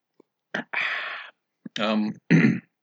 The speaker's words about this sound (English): I'm going to take a sip of my beer, so you're going to have to listen to that.